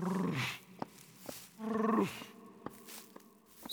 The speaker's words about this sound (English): But now and then came a deep growl from some wild animal hidden among the trees.